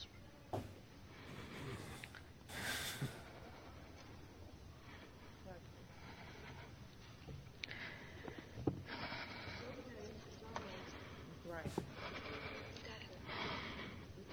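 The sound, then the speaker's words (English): Heavy, ragged breathing with sharp gasping inhales and snorting exhales repeating unevenly over a low background rumble. “Control your damn breathing.”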